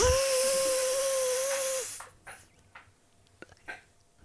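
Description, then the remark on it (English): A Nutribullet blender blending fruit roars with a loud, steady, high-pitched whir for about two seconds, then cuts off abruptly, leaving a few faint clicks and rustles. “Put the fruits into a Nutribullet and turn it on.”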